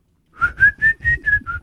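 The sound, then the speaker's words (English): A person whistles six short, evenly spaced notes at a steady pitch, fairly loud, with no talking over it. “can you whistle?”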